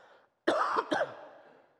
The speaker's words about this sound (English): I got to get some tea. I got a cough.